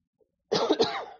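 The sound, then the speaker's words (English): A loud burst of coughing, two harsh hacking coughs in quick succession followed by a brief raspy tail, after a moment of near silence. “In my right coat pocket, I've got a cough drop in my jacket right there.”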